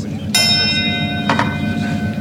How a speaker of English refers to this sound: This bell does everything.